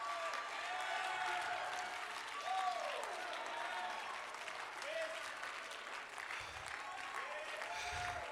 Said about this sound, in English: I want every believer that has faith for an outpouring in North Dakota to clap your hands and begin to shout like you can hear.